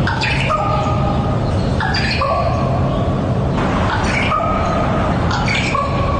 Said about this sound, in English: Do you know what a raven sounds like? They're everywhere, but have you had the privilege of hearing it? Here's a little clip.